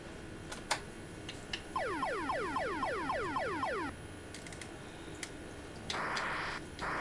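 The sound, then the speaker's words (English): Video game missiles fired by the player as countermeasures against a nuclear attack: a rapid volley of about a dozen falling electronic whistles, each sweeping from high to low pitch, followed later by a short burst of hissing noise. “It's me firing my missiles. My countermeasures, I guess.”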